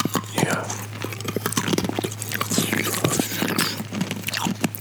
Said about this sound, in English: Take a sip. Let me chew on this piece of ice for you.